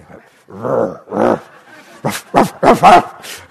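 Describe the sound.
A human voice imitates a dog, giving a couple of low growly woofs followed by a quick run of sharper, louder barks, clear with no other sounds.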